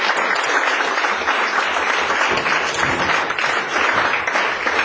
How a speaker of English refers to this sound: So let's give these guys a round of applause.